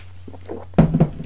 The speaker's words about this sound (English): Now I'll pause for another sip of coffee.